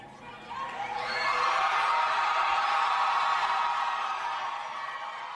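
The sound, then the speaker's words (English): A large crowd at a Beto O'Rourke rally in El Paso cheers and shouts loudly. The dense roar of many voices swells within the first second and holds steady before easing slightly toward the end. “The crowd is acting like they're at a rock concert.”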